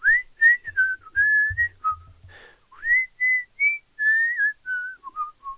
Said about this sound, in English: I was biking across the Williamsburg Bridge, and I was just whistling to myself, and this melody